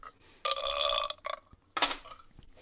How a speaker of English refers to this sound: And sorry for the burping. Although the burping brought to you by Waterloo, sparkling water, cranberry. Oh, that's good.